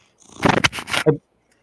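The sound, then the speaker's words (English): A pet cat named Ghost gives a single drawn-out meow, rising and breaking into a brief higher-pitched cry at the end, with silence before and after. “What's your cat's name?”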